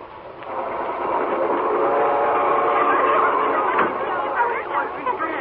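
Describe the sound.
A night train bound for Boston rumbles steadily along the rails, a continuous, fairly loud clatter and hum, with faint murmuring voices mixed in beneath the noise.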